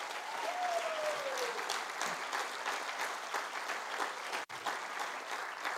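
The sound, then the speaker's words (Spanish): A church audience applauds steadily in praise of God as King, dense overlapping claps filling the whole stretch, with a brief whistle-like tone rising above early on and a sudden short dropout near the end. “Dale un aplauso al Rey.”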